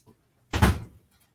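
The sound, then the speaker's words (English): A door swings shut with a single solid thud, followed by a brief rattle as it settles. The sound stands alone with no talking. “Okay, I just got to shut this door quick.”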